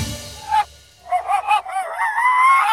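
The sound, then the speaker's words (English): A dog's recorded barks played backwards, a short run of swelling, honk-like tonal yelps that fade in and cut off abruptly, then a longer drawn-out wail, fairly loud with no talking. “I heard satanic messages in your doggy voice, so I know that you're evil, I know that you're cursed, 'cause I recorded your barking, and I played it in reverse.”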